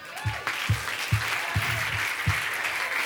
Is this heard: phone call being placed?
no